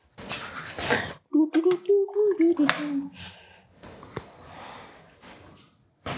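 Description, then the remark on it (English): Cold water runs from a tap into a container, a steady hiss with a brief ringing, gurgling tone partway through as the vessel fills, then continued splashy flow. “Put in some cold water.”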